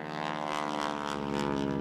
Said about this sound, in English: His airplane could go faster than all the cars, and this made him very happy for a while. Every day he would fly his airplane a little faster.